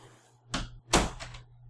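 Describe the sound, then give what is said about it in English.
A door swings shut with a couple of quick knocks and a solid thud, followed by a faint rattle of the latch, over a low steady hum. “I'm gonna close my door and I'm just gonna fucking die.”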